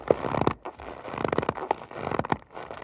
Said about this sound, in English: Fortunately, there are other ways to make snow sounds. To get a really good crunch, they'll scrunch up a bag of cornstarch.